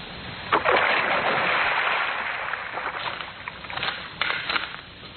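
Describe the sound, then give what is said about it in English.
A woman's body is dumped into a river: a heavy plunge with a loud splash, followed by several seconds of churning, sloshing water that gradually settles, with a few smaller splashes near the end. “Now, into the drink she goes.”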